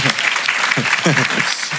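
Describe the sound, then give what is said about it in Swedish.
Steady applause from a small group fills the whole moment, a dense crackle of clapping hands, while a voice talks over it. “Är det en applåd eller?”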